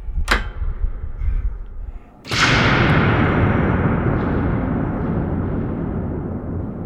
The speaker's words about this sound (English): That can be challenging, because the tank is 65 feet tall, with metal walls and a door that traps the sound inside when you close it. That door is deafening when you shut yourself inside.